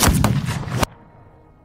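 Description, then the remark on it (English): A loud gunshot as Burr, aiming at Hamilton's center mass in a duel on the dueling ground, pulls the trigger: a harsh, booming blast with sharp cracks that roars for under a second, then cuts off into a faint, fading rumble. No one speaks. “Burr aimed at center mass and pulled the trigger.”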